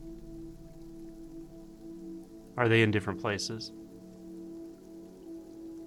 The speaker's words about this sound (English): Keeping your attention there, take in the sound of the rain.